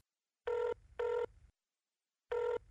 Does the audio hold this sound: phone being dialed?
yes